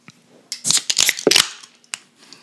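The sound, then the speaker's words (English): A quick series of sharp metallic cracks and fizzy hisses as three beer cans, one of them I'm on a Boat, a fresh beer from Monday Night Brewing, are popped open one after another, loud against an otherwise quiet background with a faint click afterward. “Well, as you can tell, we've just opened up a can and we're gonna take a sip.”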